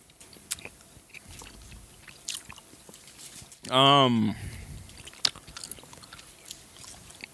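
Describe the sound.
Soft chewing of a chewy, spicy cinnamon candy similar to a Red Hot, with faint wet smacks and clicks scattered throughout, briefly interrupted midway by a short, loud voiced hum.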